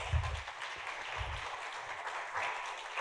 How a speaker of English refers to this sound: Folks, give them a little applause here so they can...